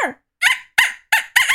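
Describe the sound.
A human voice mimics a dolphin with a quick series of four or five high, squeaky chattering bursts, each rising and falling in pitch, loud and in a steady rhythm with no talking.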